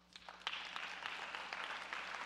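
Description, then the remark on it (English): A crowd claps steadily for a couple of seconds, a dense patter of many hands with a brief sharper burst near the start, with no talking, applauding a record number of kids joining a tutoring program. “We have a record number of kids already coming into the program for the tutoring program, which is awesome, and we should clap for that.”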